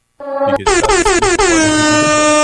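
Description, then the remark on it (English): Loud air horn sound effect blasts in quick succession, a few short stuttering honks leading into one long sustained blare, alone with no talking. “Where are my fucking air horns?”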